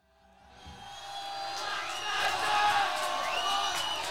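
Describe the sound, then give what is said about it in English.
A large concert crowd on a live album recording screams and yells along with the song in a dense, roaring wash that swells over the first second and stays loud, with a few higher voices wavering above the mass. “And how about these guys screaming it in the background too?”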